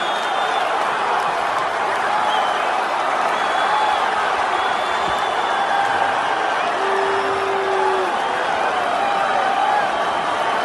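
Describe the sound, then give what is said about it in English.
A large arena crowd roars continuously at the end of a fight after Conor taps out, with cheering, scattered yells and whistles blending into a dense, loud wall of noise that holds steady throughout. “As the crowd cheering, fight over.”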